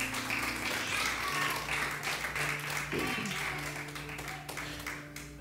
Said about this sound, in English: Give God a round of applause for that word.